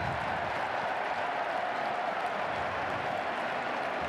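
A large stadium crowd of Texas Longhorns fans at a college football game gives a mocking round of applause and cheers, a Bronx cheer for Duvernay kneeling on a kickoff instead of returning it; a dense, steady wash of clapping and roar that holds at an even level throughout, with no one speaking over it.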